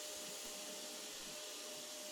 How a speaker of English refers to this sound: I am hearing the vacuum cleaner again. Right when I'm starting to deliver the heavy speech, the vacuum cleaner starts up again. How much vacuuming can you do?